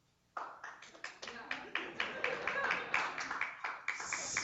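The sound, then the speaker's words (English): An audience at a book reading bursts into applause after a brief silence, voting to move on to questions, many hands clapping in a dense, steady patter that stays fairly loud until the end, with a faint murmur of voices underneath. “For those who want to get to the questions, applause now.”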